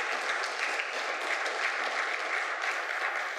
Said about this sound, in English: He got injured however many months and weeks ago, and he hadn't been able to pick up his guitar. Yeah, y'all clap for him.